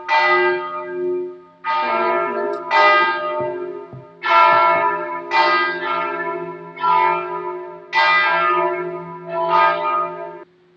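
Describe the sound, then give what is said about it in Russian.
Church bells ring out in a steady peal, about eight loud, resonant strikes in even succession, each tone ringing on and fading into the next, with no voices. “Колокола, мы все слышим.”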